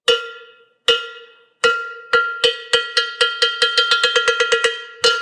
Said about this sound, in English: Well, hey, before we let you go, you want to hit that cowbell? We'll see how you place.